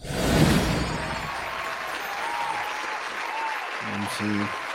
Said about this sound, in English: Gotta love a great nap. Round of applause for the great nap.